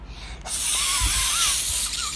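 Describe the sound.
A voice imitates a snake's hiss: one long, steady, breathy hiss that starts abruptly after a short quiet moment and holds loud for nearly two seconds.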